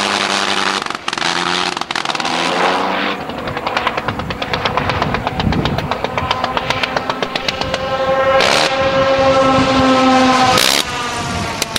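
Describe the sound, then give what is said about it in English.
The rotary engine of a Sopwith Camel biplane, recently rebuilt, runs loud at Classic Fighters 2001, with a rough, rapid firing rhythm whose pitch swells and dips as the throttle changes. “The undisputed star of Classic Fighters 2001, the rotary engine-powered Sopwith Camel, only recently re-emerged from a lengthy engine rebuild process.”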